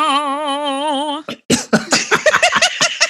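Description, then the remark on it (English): A steady, wavering vocal tone cuts off abruptly, then a loud fit of harsh coughs bursts out in quick, irregular succession and continues to the end. “It was a coughing attack just at the wrong moment.”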